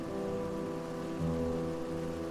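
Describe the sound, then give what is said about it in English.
Steady rain falls in a continuous hiss, with a soft low rumble swelling slightly about halfway through. The sound stays even and moderately quiet, and no one speaks. “They decided, in this situation, it probably wouldn't matter if they went inside until the rain stopped.”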